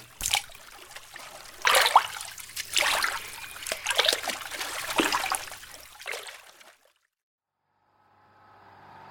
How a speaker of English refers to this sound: Pound the water with my paddle and scream that something took you.